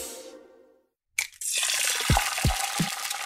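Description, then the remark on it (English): A tonal note fades into a brief silence, then steady sizzling and crackling of bacon frying in a pan takes over, with a few soft low thumps underneath. “Nothing like the smell of frying bacon in the morning.”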